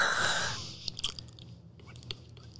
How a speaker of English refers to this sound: She's fucking chewing. This is someone else. Okay. Are they chewing their cheeks? Yeah.